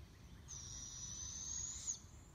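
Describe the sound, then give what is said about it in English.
An owl gives a single long, thin, high-pitched screeching call lasting over a second, over a steady low outdoor rumble. No one speaks. “You might not be able to see that, but that is an owl.”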